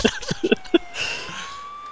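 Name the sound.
police siren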